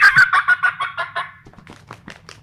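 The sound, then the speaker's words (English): A wild turkey cutting call: a rapid, irregular burst of sharp, high clucks, loud at first and then trailing off into a fainter, scattered series. No one speaks. “It's kind of like a Doppler affected cut.”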